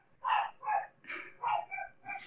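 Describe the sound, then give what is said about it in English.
A hound dog kept at home, belonging to a sister, barks about six times in a steady, even rhythm, the baying sounding somewhat muffled, with no talking over it. “Is that, you have a hound dog at home?”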